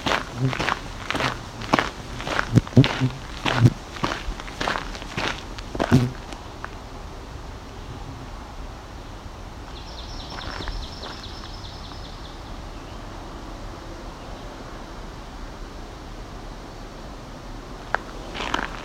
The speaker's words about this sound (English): There's an open wetland. There's a swamp sparrow ringing.